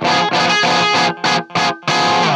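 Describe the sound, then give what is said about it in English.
Bright, distorted electric guitar on the bridge pickup of a Gibson jazz-box guitar with two mini humbuckers, tune-o-matic bridge and stop tailpiece. Loud sustained chords broken by a few short gaps, with crisp, biting treble and no voices. “As long as we're there, that is the bridge pickup. Very bright.”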